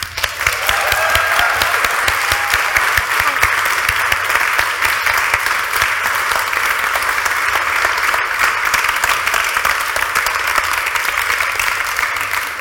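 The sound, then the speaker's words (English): A crowd gives a warm round of applause for a guest, clapping steadily for about twelve seconds, a dense, even wash of many hands clapping at once, loud and sustained with no voices over it. “So if you could put your hands together for a warm round of applause for”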